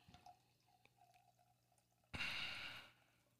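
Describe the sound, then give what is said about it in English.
Faint scattered drips, then a sudden rush of liquor pouring into a glass for under a second, a bright splashing hiss that cuts off quickly. No one speaks. “I said, I love hearing gook, gook, gook, gook, gook, gook when I'm pouring my liquor.”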